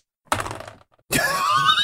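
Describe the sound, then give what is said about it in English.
Dice clatter and tumble across a tabletop in a short rattling burst during a tabletop role-playing game check, landing on a 2 and a 3, then a brief pause, followed by a drawn-out, groaning vocal sound. “I rolled a 2 and a 3.”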